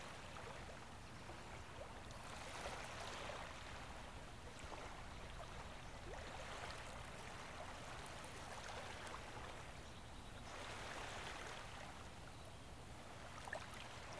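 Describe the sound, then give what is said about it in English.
Steady rushing ocean waves with broad, hissing swells that rise and fall every few seconds as they wash in. No voices are present. “You can hear the distant calls of exotic birds, their songs intermingling with the rhythmic symphony of waves.”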